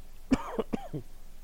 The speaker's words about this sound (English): Not sure what's going on. I'm suddenly coughing.